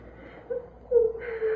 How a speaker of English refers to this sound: Say, kid, can't you never quit crying? Now cut out them sniffles. They ain't going to help you any.